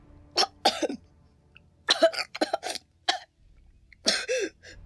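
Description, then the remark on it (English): Harsh, spluttering coughs come in several bursts, some single and some in quick clusters, like someone choking up water. No one speaks between the fits. “Water quickly rushed out onto the dry grass. Link coughed and spat.”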